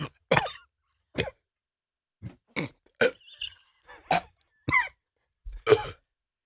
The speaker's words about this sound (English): Would you rather have me cough?